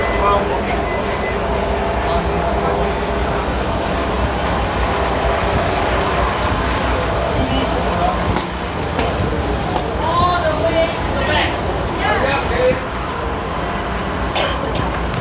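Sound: street traffic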